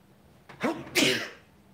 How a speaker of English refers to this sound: It's one thing to sneeze once. There's cat hair all over the place. But I've sneezed several times this morning, and I don't know if you caught it. That sneeze had a cough in it.